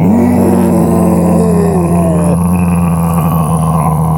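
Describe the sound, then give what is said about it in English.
A voice imitates a long, loud, low groan that drones steadily for about four seconds with a slight wavering pitch and a hollow, reverberating quality. “Pat's groans reverberated around Johnny's dick.”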